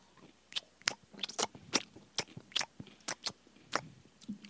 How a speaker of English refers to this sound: He said, just crunch more into the mic. The upper management with what? He said closer to the mic.